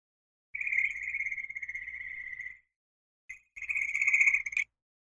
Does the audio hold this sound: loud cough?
no